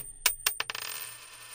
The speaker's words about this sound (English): On your side, it is the great rock biographer, musicologist Peter Guralnick. On my side, it is the great rock and roll madman, greatest rock critic who ever lived, Lester Bangs. Let us toss the coin.